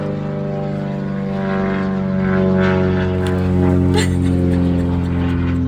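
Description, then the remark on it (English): A propeller plane roars overhead, passing right above a car, a loud, steady droning hum with layered engine tones that swells a little louder midway and holds without letting up. “And they went right above my fucking car.”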